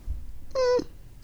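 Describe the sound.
A person imitates a puppy with one short, high-pitched whine that holds a steady pitch for about a quarter second. It stands fairly loud against a quiet background, with no talking.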